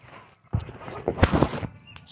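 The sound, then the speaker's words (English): Barnyard animals jostle and feed as they are being fed, with a quick run of hoof-like clops and rustling, a few brief high chirps near the end, and no voices. “Barnyard ASMR, by the way. Feeding my aminos.”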